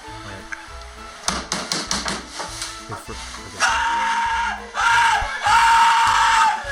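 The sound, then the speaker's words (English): A drunk man lets out loud, drawn-out, strained screams, one after another, following a stretch of clattering, knocking wooden thumps as he gets out of a cardboard box and tumbles off a dining table to the floor, neck first. “You gotta check out this scream.”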